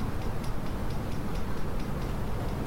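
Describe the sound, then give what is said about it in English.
A steady, evenly spaced ticking from a fan repeats about five times a second over a broad, continuous whir, fairly quiet, with no voices. “I don't know what the ticking... It's the fan, I think.”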